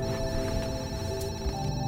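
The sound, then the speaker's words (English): A telephone rings at 3 a.m., waking the head of the South African cricket board, with a steady, bright electronic trill that holds without pause for the whole moment, moderately loud, with no voices around it. “The head of the South African cricket board is woken by a phone call.”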